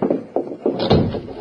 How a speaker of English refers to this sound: Close that door behind you